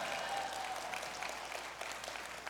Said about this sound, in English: Hey, I should get an applause. Come on.